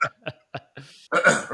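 Three short, abrupt hiccups sound in a quick, even rhythm, followed by a breathy exhale and a louder, strained vocal noise.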